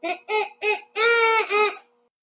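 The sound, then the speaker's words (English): A child's voice imitates a bald eagle call: three quick, high-pitched yelps followed by a longer, wavering squeal that breaks in two, fairly loud with no other sounds. “It doesn't have to be perfect, but let me hear your best shot at an eagle noise.”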